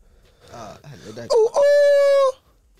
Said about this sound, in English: Right, chicken. Ooh. A drunk rooster.